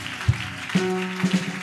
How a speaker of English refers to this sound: Tonight, as I clap my hands, any spirit, any demon assigned to fight against my work, I destroy them by fire, by thunder. Clap your hands and pray.